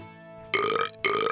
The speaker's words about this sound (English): And BB stood up and grinned. She let out the biggest burp W.E. had ever heard.